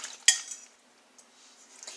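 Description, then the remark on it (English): A fork clinks sharply against a bowl once, then scrapes softly through a wet yeast mixture being stirred for a loaf of bread, with a couple of faint taps and swishes trailing off. No one speaks. “And I just use a fork to stir it.”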